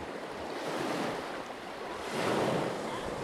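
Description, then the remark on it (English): Ocean waves wash steadily against the shore below a coastal overlook, a broad continuous roar that swells louder near the end, with some wind buffeting in the background and no voices. “As we sit at one of the many overlooks to watch brown pelicans dive into the water and sea lions sunning themselves on rocks, you realize there's endless things to discover here.”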